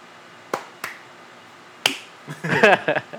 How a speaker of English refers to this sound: Clap one time, you can hear me. Clap two times, you can hear me. Clap three times, you're gay.